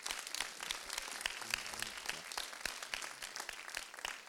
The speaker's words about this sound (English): Is Jordan here tonight, the community leader? Yeah. Let's give Jordan a round of applause.